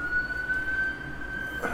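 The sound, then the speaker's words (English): A steady, high wailing siren from an emergency vehicle passing by holds one sustained tone over a low rumble of traffic, with no talking. “Sorry, there's a siren going by.”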